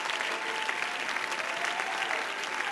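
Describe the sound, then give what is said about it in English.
An audience claps hands steadily throughout, answering a preacher's call to clap and shout unto God, a dense, sustained wash of applause from many people, fairly loud, with no distinct shouting rising above it. “Come on, everybody that's on board with me, clap your hands right now and shout.”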